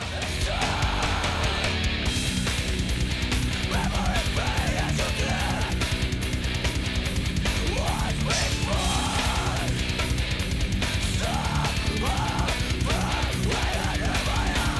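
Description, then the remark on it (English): After a pause, a man's harsh, screamed vocal tears through a dense, loud wall of heavy guitars and pounding drums, the strained cries rising and falling in bursts over the relentless hardcore music. “I can swear in the car I was yelling a word that I had no clue what it was, but that just pause and then him yelling is just like so epic, dude.”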